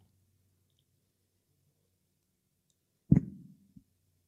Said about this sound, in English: Sorry, just water break.